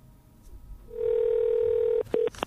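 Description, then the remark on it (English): A steady telephone dial tone sounds for about a second, then briefly cuts out and returns for a short burst, ending in a quick click as the call is placed; no one speaks. “Here at Her Society, we call a lot of people.”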